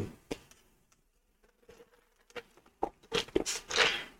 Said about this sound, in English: Sorry, y'all, just having a sip of my drink